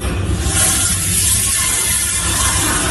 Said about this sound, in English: All right, you hear the toilet flush.